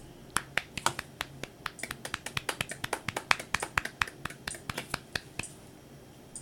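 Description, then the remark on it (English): Sparse applause from what sounds like a small group, sharp irregular claps overlapping steadily for several seconds at moderate volume, with no talking over it. “A 5 to 10 second applause for Glenn, please.”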